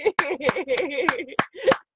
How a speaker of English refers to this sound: I am clapping for your greatness. I'm clapping for our evolution. I'm clapping for us coming out of that chrysalis state as the beautiful butterflies that we are.